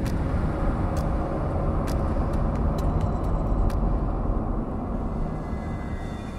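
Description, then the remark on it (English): A car engine roars under hard acceleration as the driver floors it to get out of Batterton Woods through the hills, a loud, unbroken rumble lasting throughout, with a few faint sharp ticks in the first half and no voices. “I was flooring it. I keep driving”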